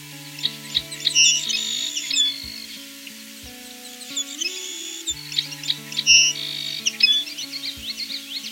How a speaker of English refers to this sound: First, the song sparrow. Next, the Savannah sparrow. The Savannah is a bit more thinner sounding due to it being more high-pitched. Here at Johnson 2 Park in Greensville, I've managed to record the two species together.